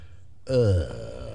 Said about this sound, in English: But I'm stomach growling. I don't know why it's growling, but it's growling.